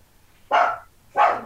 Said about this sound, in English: It's usually not the barking dog I have to deal with. It's a different barking dog.